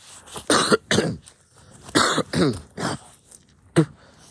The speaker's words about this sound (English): You do a big, wretched cough, and then you spit on the floor. It's not good for the floor. Dude, we're out in the grass.